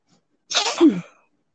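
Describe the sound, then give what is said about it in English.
A single sneeze from a person holding a hand over the microphone, a sharp breathy burst that ends in a short voiced tail, muffled slightly and heard alone with no talking around it. “I hope I covered up the microphone so you guys didn't hear, have to hear me sneeze right then.”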